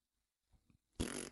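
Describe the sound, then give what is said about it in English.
A voice blows a short raspberry imitating a fart: two soft sputters, then a loud, buzzy burst lasting about a third of a second. “It'll be fart noise.”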